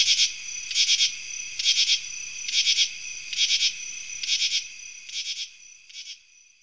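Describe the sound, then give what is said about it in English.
Raspy katydid calls from the treetops on a hot, humid summer night, males and females answering, pulse in a steady rhythm: about eight harsh buzzing bursts spaced under a second apart, the last few growing softer. No voices. “raspy calls from the treetops on hot, humid summer nights”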